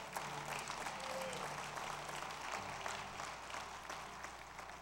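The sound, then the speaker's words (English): Steady clapping from a small group of people during a church service carries on for the whole stretch, dense and fairly even, with faint voices murmuring low underneath. “I heard three amens, and I got a couple of people clapping.”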